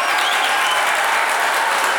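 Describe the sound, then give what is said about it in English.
A clapping applause sound effect: a burst of applause from a group, many hands clapping densely and steadily at a fairly loud level for a couple of seconds, with no voices. “I'll put the clapping audio.”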